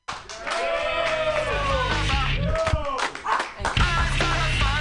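An audience at a comedy show breaks into loud, sustained applause for the next comedian being introduced, with a dense wash of clapping and scattered whoops and cheers rising over it, dipping briefly before swelling again.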